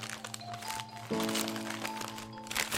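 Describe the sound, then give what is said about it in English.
Crinkling and crackling of wrapping paper being torn and pulled off a wrapped 21st birthday gift box holding a wine glass, with irregular crunchy rustles over a low steady hum, no one speaking. “A wrapped box?”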